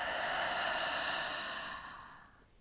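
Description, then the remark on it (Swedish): A long, slow breath pushed out through the mouth in a relaxation breathing exercise, after filling chest and belly through the nose: a soft airy rush that holds steady and then gently fades away, quiet with no talking. “Och släpp långsamt ut andetaget genom munnen.”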